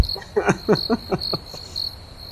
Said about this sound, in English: Oh God, hit the cricket sound effect, would you please?